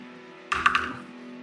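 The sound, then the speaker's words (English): A die clatters briefly in a dice tray and lands on a corner, with three or four quick clicks in under half a second before settling, over a faint steady background hum. “Fucking dice tray. It rolled on a corner.”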